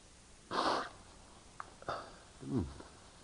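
A single abrupt sneeze bursts out, followed by a few faint clicks and a short low vocal sound, like a throat noise, amid otherwise quiet.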